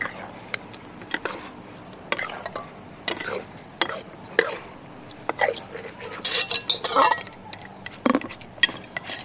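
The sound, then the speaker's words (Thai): Utensils toss and stir food mixed with a little crunchy pork crackling in a bowl or pan, with a run of sharp scraping clinks and crunchy rustles, fairly loud, busiest toward the middle. “ดิฉันใส่กากหมูกรุบกริบไปนิดนึงนะคะ คลุกไหมครับ คลุกค่ะนิดเดียวอ่ะโอเค”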